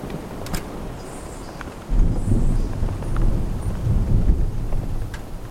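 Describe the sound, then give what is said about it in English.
Steady rain hisses throughout while a deep, rolling rumble of thunder swells in about a third of the way through and keeps grumbling low underneath, loud, with no voices. “Come on in out the rain, then.”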